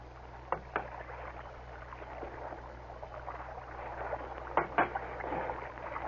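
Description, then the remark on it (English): Oars of a small boat dip and pull through water in pairs of splashy strokes, with steady lapping and sloshing between them, moderately loud, no voices. “we keep rowing.”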